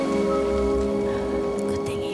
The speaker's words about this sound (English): I wish the rain would stop just once. It can't rain all the time.